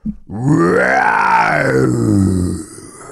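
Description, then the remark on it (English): A person imitates a lion's roar with one loud, sustained growling cry lasting over two seconds, its pitch sweeping up and then sliding back down before it fades out. “What about, a lion roar would be good, actually. Like, what if I make the sound?”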